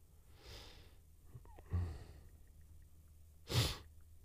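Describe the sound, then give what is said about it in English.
Three breathy sniffs right up against the microphone, separated by short pauses, the last one the loudest and sharpest, with only a faint hum in between and no talking. “Sniffing in the mic.”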